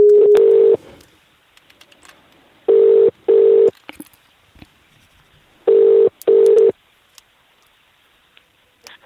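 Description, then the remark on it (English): A telephone line tone beeps in loud, steady double pulses as a phone call is placed, each pair separated by a short pause, repeating three times over faint line hiss, with no talking. “It's the phone call, unedited”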